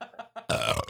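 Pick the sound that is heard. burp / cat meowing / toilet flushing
burp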